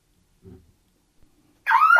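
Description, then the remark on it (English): After a brief low murmur and a near-silent pause, a loud, shrill electronic siren from the Security Siren skill on an Alexa smart speaker suddenly starts, its bright harmonic wail filling the final moments. “Alexa, open Security Siren.”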